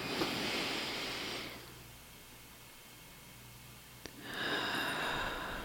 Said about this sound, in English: Well, it's really nice to take a deep breath without feeling like I'm going to cough. Oh, yeah. Boy, there's nothing I love better than being able to take a deep breath in and out without coughing myself, because you know I often live with a cough.